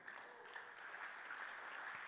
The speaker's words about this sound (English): Oh, you're clapping this in the house today. You're clapping this in the house today.